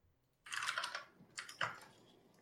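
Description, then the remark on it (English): Rapid typing on a computer keyboard, a dense burst of clacking keys followed by a brief pause and a few more sharp keystrokes, clear with no voices. “is there anything you can do about your keyboard? It's a little on the high.”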